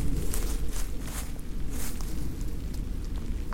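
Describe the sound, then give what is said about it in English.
A few crunchy footsteps in the woods, soft irregular shuffles through leaves and brush over a steady low rumble, with no talking. “Sorry, it's definitely a foot.”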